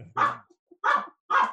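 A female dog barks three times in quick succession, short sharp woofs spaced about half a second apart, loud, with no talking over them.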